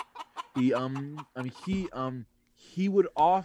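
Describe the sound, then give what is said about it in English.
A voice imitates a clucking chicken: a handful of short, throaty bursts and drawn-out squawks with brief gaps between, loud and fairly steady in level. “That's definitely a chicken.”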